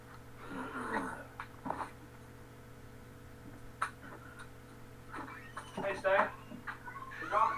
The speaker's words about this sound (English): I think the dog's going to cry the whole time.